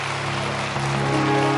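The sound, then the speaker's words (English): An audience claps together in tribute to Sister Garrison, in a dense, steady wash of applause that swells slightly toward the end, with a sustained low musical tone humming underneath. “Let's give Sister Garrison a hand clap.”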